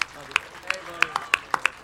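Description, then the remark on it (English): Scattered applause for Marc Miller: about eight sharp, separate hand claps at an uneven pace over a couple of seconds, moderately loud, with a faint background murmur. “Let's give a round of applause for Marc Miller.”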